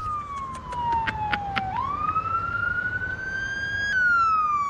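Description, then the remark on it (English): A fire truck siren wails, its pitch sliding down and then climbing back up, with a few sharp rapid bursts near the start and a low engine rumble underneath. “Another fire truck.”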